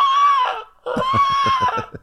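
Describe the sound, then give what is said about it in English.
A TV show's scary music cue: two drawn-out, shrill wailing cries like eerie seagull calls, the second riding over a rhythmic pulsing low thump, giving a menacing horror-score feel. “They do like a horror music version of seagulls.”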